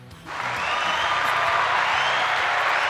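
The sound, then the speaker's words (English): A recorded crowd applause sound effect starts abruptly after a brief quiet moment and holds steady as dense, continuous clapping, with faint low tones of music or voices underneath. “I did throw the little applause in there.”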